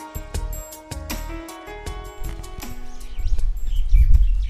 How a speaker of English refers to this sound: While the birds are twitting, tweeting, whatever you want to say, making a nice little sound here, the waters of the Indian Ocean are lapping on the sandy, sandy beach.